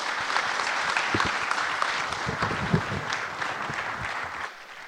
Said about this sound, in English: Can we give these guys a huge round of applause, please?